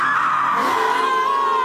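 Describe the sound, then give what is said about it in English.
A woman lets out a loud, sustained scream that slides slowly downward in pitch, steady for nearly two seconds with no talking over it. “And she screams.”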